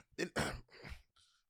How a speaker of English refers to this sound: Don't cough. Girl, the wrong cough will get you fucked up. The wrong cough will fuck your shit up.